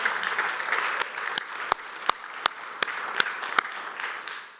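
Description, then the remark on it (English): A crowd of people claps steadily for several seconds in celebration, giving God a round of applause, a dense wash of many hands with a few sharper, louder claps standing out before it gradually thins. “So let's give God a round of applause.”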